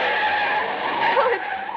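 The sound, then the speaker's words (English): A sustained, high-pitched screech of car tires skidding, loud, with a slight wavering pitch as the car swerves across the center line and past over a couple of seconds. “The driver swerved way across the center line, as though he were trying to run us down. Then he kept right on going.”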